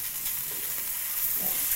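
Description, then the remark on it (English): Chicken sizzles steadily as it browns in hot oil, a continuous crackling hiss with faint pops and stirring scrapes, with no one talking. “Oh my God, he finished browning the chicken. I'm browning, bro. Do we need more oil?”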